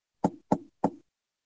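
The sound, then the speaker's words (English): Three firm knocks on a wooden door in quick, even succession, clear with no voices, then silence. “Yeah, so you knock on the door, and the door pretty rapidly opens up”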